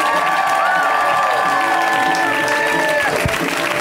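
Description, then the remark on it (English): A comedy show audience applauds and cheers steadily throughout to welcome a comic on their first time on the show, dense clapping mixed with shouts and a few long, high whistles sliding across the noise, staying loud from start to finish. “welcome them with a hearty round of applause.”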